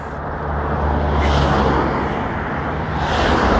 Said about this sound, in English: So I'm trying to pause in between the traffic. The fake people being in a rush, there's loads of traffic. There's not, it's absolutely dead, but clearly they're late because they're stuck behind loads of traffic.